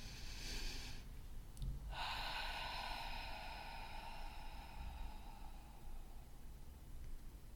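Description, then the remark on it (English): A slow, deep breath drawn in and let out during a guided breathing exercise, a long airy inhale followed by a steady whooshing exhale, with no one speaking. “So breathing in.”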